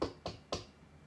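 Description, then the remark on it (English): Three sharp knocks on a door, made as a storytelling sound effect, in a quick, even rhythm, moderately quiet, with a faint hush between them and no one speaking. “So Kisa knocks on the first door. I'll try to do the sound effect.”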